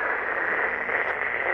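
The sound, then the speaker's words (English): Steady walkie-talkie radio static hisses for the whole moment as the walkie picks up nothing, a dense, even crackling wash with no voice coming through, constant in level. “Unfortunately, your walkie does not get any... it's just static.”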